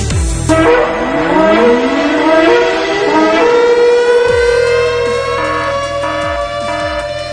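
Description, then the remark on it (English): Warning sirens wail continuously, their rising, sweeping tones overlapping in loud harmonic layers, with low rhythmic pulses underneath and no talking. “And wow, there are sirens. There are warnings that are going off all over the place.”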